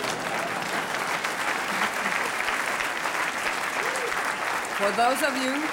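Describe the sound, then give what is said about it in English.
Sustained applause from a crowd for Dr. Novello, the first female Surgeon General of the United States, a dense steady clatter of many hands clapping at an even loudness, with some voices and cheering rising above it near the end. “I know that you're tired, but you're looking at the first female Surgeon General of this United States, and I think that needs a round of applause.”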